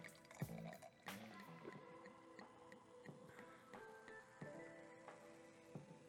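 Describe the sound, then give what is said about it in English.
Barefoot Bubbly Pink Moscato sparkling wine is poured into a glass, a soft fizzing trickle with a faintly ringing, shifting tone and a few small clicks and taps along the way. “Yes, pour it, honey, pour it.”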